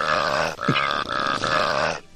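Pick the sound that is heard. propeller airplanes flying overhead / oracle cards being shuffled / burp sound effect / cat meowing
burp sound effect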